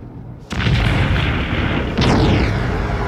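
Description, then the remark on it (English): A massive cinematic explosion of a planet in the film Rogue One: A Star Wars Story, as the characters fly away, erupts after a brief quiet, settling into a dense, roaring rumble, then surges again with a second blast and rushing, whooshing debris. No one speaks. “As they fly away, Iodu exploding.”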